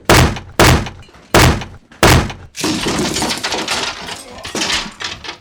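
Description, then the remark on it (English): The door to Cray's office is battered down: four heavy, booming thuds land in a steady rhythm, then give way to a long, loud burst of splintering and crashing debris. “Break down the door!”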